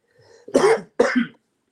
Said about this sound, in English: Man, I'm not going to stop coughing.